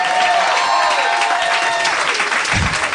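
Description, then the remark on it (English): Steady, loud applause from a crowd, a dense wash of clapping that holds at an even level for a few seconds without any voices standing out. “Oh, everybody clap.”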